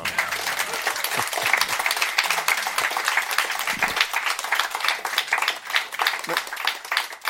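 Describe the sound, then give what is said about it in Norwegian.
A burst of audience applause, many hands clapping in a dense, steady patter that stays fairly loud for several seconds without any talking over it. “Det fortjener en applaus til.”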